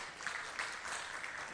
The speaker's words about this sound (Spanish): Hoy trajeron a más familiares, así que pues bienvenidas. ¿Por qué no les damos un aplauso?